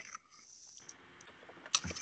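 Someone slurps a drink, a soft airy sucking noise that swells into a louder wet slurp near the end, with no talking.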